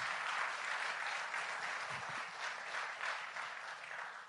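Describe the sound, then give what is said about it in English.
A crowd gives the Lord a clap offering, clapping steadily and loudly for several seconds, a dense wash of overlapping handclaps with no clear rhythm and no voices standing out. “Can we give the Lord a big clap offering in the house today?”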